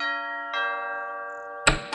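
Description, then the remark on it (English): A two-tone doorbell chimes at Enzo's big gray house, two clear ringing notes with long sustained decay, followed by a brief clattering thump like a door being handled. “So Carmela headed over to Enzo's big gray house and rang the doorbell.”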